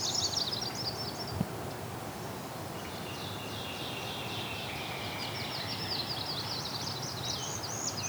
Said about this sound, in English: Goldfinch here too, and northern cardinal trying to compete.